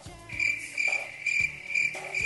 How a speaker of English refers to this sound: Crickets.